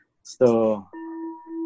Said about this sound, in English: So this is beautiful, nice humming bowl.